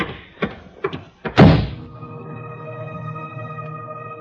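A door clicks and rattles with a few light knocks as someone leaves, then slams shut with a loud thud, leaving a low steady hum afterward.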